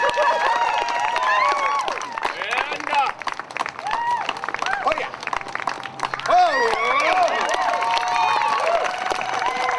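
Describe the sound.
An audience claps steadily throughout for a performer on a balance board with fire over gravel. Sharp hand claps repeat in a fairly even rhythm, mixed with a busy layer of crowd voices, shouts and whoops.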